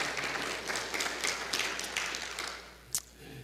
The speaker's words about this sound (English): Give the Lord a hand clap of praise for his word, would you?